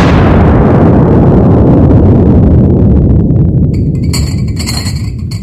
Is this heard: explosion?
yes